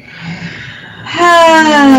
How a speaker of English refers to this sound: Let's take a deep breath like that, where you make a sound, actually. And you could do this at home, too.